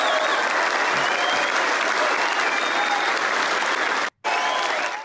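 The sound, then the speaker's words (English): Loud, sustained applause from a large crowd at a Pierre Poilievre rally, a dense steady roar of clapping that fills the whole stretch, broken only by a brief sudden cut near the end before resuming. “Yeah, just resounding applause there.”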